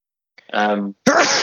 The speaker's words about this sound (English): bless you.